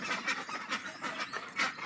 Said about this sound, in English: It is very funny watching the ducks as they all panic and they run like one big hive mind, all together, all in the same direction.